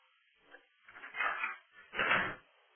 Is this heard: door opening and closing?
yes